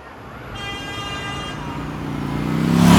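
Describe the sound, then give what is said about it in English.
A motorbike's bright horn blares for about a second over a steady rumble of sputtering engines in the streets of the town of Swatow, swelling louder toward the end as the motorbike, its carriage laden with goods, narrowly misses a man. “The town is now peppered with honking and sputtering engines.”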